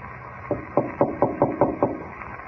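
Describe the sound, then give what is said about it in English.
A quick run of about seven even knocks on a wooden door, steady, over a faint, muffled background hiss, with no voices. “He knocked at the door and then skipped off down the corridor.”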